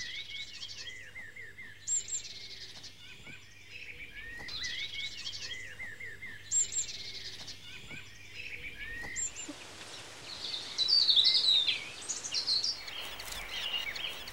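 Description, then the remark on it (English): A nestful of sparrowhawk chicks in an oak wood call with repeated thin, high-pitched cries in a steady rhythm, before a rustling, hissy wash of woodland sound rises and partly covers them. “Providing food for a nestful of sparrowhawk chicks is a full-time job.”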